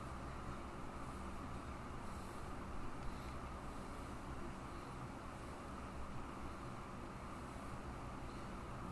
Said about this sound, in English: Hey, look, the train's coming.